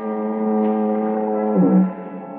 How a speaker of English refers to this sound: It's cool, quiet. Except for the monotonous moan of the foghorn down at the point near San Quentin Prison.